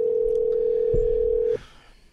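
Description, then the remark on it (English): A steady, loud telephone dial tone hums at one unchanging pitch for about a second and a half as a call is placed, then cuts off abruptly, leaving faint background hiss. “I'll call him and tell him to call the show.”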